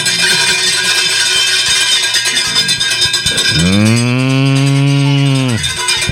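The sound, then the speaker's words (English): Many livestock bells clank and jingle continuously in a dense, steady clatter, with a long, loud animal bleat or moo rising over them midway. No one speaks. “Where are the bells? Where are the bells? Here they come.”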